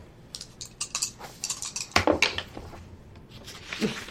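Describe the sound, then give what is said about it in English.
Dice are rolled in a tabletop role-playing game, rattling and clattering on a hard surface in a quick irregular run of sharp plastic clicks and taps lasting a few seconds and coming up 9, with no one speaking. “Go ahead and roll me.”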